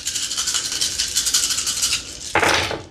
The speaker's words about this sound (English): 6 successes with the stunt. I rolled 15 dice, y'all.